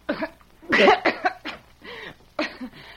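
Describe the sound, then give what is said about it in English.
A person coughs in a string of harsh, throaty bursts, several clustered together, then a short pause before a final couple of coughs. “My voice just won't behave when I feel a cough coming on.”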